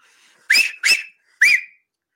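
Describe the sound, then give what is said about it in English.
Three loud, piercing two-finger whistles in quick succession, each a sharp rising blast with a breathy rush of air, the third after a brief pause. No talking. “I am jealous of these people who can do that same whistle without the fingers, just with a tongue motion.”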